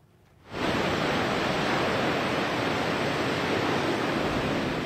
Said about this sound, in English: At Waimea Bay on Oahu's north shore, spectators were urged to stay far up on the beach as the large waves crashed into the shoreline.